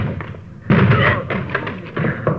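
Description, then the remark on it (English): A locked door is forced open with a run of heavy, irregular thuds and cracking impacts, loud, landing roughly every half second with no one speaking. “Door's locked.”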